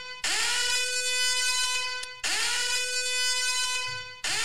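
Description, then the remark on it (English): A loud, blaring electronic alarm sounds in long, buzzy blasts, two full two-second honks and the start of a third, each rising briefly at the onset, with no talking. “Sound the alarm. Sound the alarm.”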